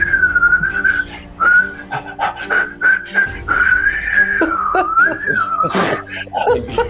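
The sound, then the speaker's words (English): A steady, wavering whistled melody carries on for several seconds, loud, with a reedy harmonica playing sustained chords underneath, following along to match and accompany the whistling. “I'm gonna hear him whistling and accompany him with the harmonica, trying to like match and accompany on top of it, just if possible.”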